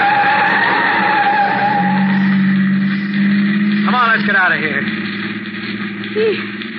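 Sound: car brakes screeching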